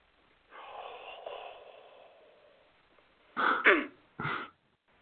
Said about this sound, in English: I was trying not to cough. Not that you couldn't tell.